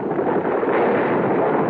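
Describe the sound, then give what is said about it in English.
A rock slide of stones dislodged from the roof of a cave, landing in front of the cave entrance: a loud, continuous rumbling roar of tumbling stones that holds steady for just under two seconds, with no voices. “What was that? Sounds like a rock slide.”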